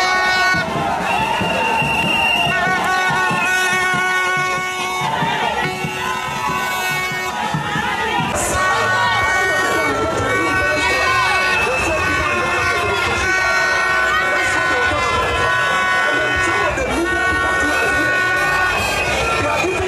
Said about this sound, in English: And as you can see, it's all charged up here, fired up. There are demonstrators on the floor wielding placards. There are motorbikes. There are people from various fraternities represented here.